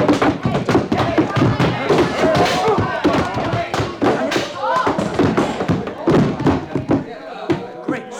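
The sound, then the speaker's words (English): A rapid flurry of heavy punches lands in close succession, knocking a man unconscious, dull thuds and smacks piling over one another, with grunting and raised voices mixed into the scuffle before it trails off. “You knocked him out.”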